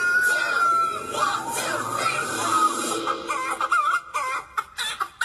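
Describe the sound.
A person imitates a chicken, clucking loudly and steadily over a busy, crowd-like background, then breaking into choppier bursts of clucks toward the end.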